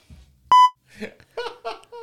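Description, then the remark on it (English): A single loud, short censor bleep, a steady high-pitched tone lasting a fraction of a second, followed by bursts of laughter and a bit of voice. “Oh, good beep, good algorithm the right there.”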